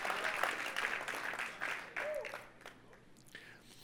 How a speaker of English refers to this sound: And everybody said together, come on, Angelinos, let's clap right now and let's thank God. We are blessed.